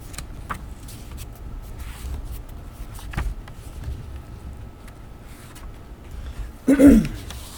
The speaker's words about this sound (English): Sorry, I have to keep clearing my throat.